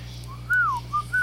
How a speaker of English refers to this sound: A gentle bird in the breeze.